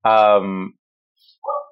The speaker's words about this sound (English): Hold on, wait 1 second. My dog's barking.